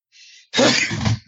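A single loud sneeze: a brief breathy inhale, a short pause, then a forceful explosive burst that trails off quickly. No one speaks.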